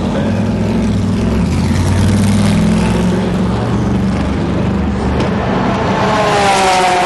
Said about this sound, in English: And here goes the Corvette.